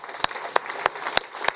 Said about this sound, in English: I'd like us just to really, it's almost like a prophetic act, just to applaud the Lord for what he's going to do in Helsinki. Let's thank him.